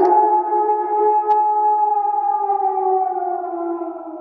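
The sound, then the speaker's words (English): A person imitates a wolf howl, a loud, sustained wavering tone that glides slowly downward for several seconds, unbroken, with no other talking. “Going to give her one of those good old Wolfpack howls.”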